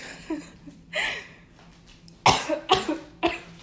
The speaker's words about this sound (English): I don't have smoker lungs, so I don't want any, like, comments about me coughing or having, like, that, like, weird, like, grovel to my voice, because I don't really have that grovel.